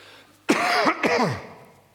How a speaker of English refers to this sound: I'm just going to have a quick cough here.